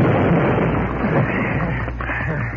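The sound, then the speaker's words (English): A loud, sustained explosion wrecking most of the Daily Leader newspaper building at 3 o'clock in the morning roars and rumbles for a couple of seconds, a dense, steady blast of noise with low booming underneath and no voices. “At 3 o'clock the next morning, Pozo Lyons and Ned Henderson set off the explosion that wrecked the greatest part of the newspaper building.”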